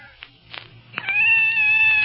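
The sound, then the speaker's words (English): A scared cat in a closet lets out a long, drawn-out meow that rises and holds steady, preceded by a few faint short sounds, fairly loud with no one talking. “It's a cat. Kitty, kitty, kitty. A cat.”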